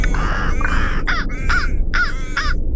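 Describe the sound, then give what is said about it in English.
Ravens cawing loudly around a red car they have infested, a run of about six harsh, raspy caws overlapping in quick succession, with no voices. “The man's red car was infested with ravens.”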